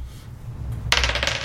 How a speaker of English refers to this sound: Oh, shit. Boy. Shit. I rolled a 6. Oh, give me that dice back.